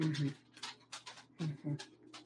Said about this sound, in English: Is there a reindeer in your office? Or just two dogs. Yep. They were asleep. These are two dogs that absolutely insist on being in my office with me. And now they're now they're wandering.